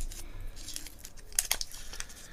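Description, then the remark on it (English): Quiet crinkling of a thin white wax paper covering being unwrapped from a small cube of pink-packaged gum, with a couple of sharper crackles in the middle and a soft rustle throughout; no one speaks. “Now, pink packaging, but on the inside of the wax paper covering, totally white.”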